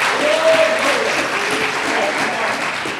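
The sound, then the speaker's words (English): An audience claps steadily as a clap offering, a dense, continuous wash of many hands that stays loud throughout, with a faint voice calling out briefly beneath the applause. “Now give him a clap offering.”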